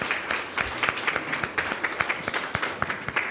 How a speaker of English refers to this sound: Let's give a round of applause to all our scholars and speakers who came from all over the globe, essentially.